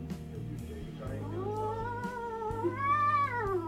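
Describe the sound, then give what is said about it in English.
A cat lets out a long, wavering, drawn-out meow that bends up and down in pitch, sounding strange and almost sung, fairly loud over a low background rumble. “That is a weird cat noise.”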